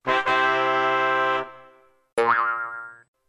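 Two springy cartoon boings sound alone, one after another: first a bright, buzzy twang holding steady then fading, then a second with a wobbling, warbling pitch that quickly dies away.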